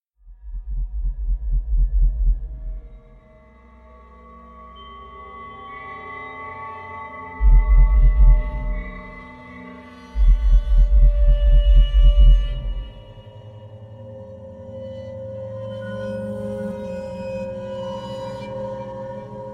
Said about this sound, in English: The liquid was my tears as I listened to the last slow thumps of my heart, knowing it would be the last noise my body would make.